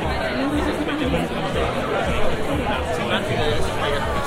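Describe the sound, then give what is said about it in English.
Dense crowd chatter at a very crowded awards party, many overlapping voices forming a steady, loud babble with no single speaker standing out, continuous throughout with small swells in volume. “I'm literally stuck in this crowd of people.”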